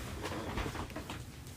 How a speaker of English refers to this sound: It's my Goodwill chair, and, yeah, if I just barely move, it makes these loud groans.